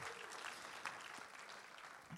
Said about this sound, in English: It is worth clapping for.